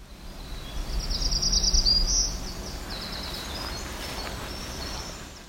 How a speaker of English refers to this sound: This was a Black-throated Green Warbler along with a Winter Wren.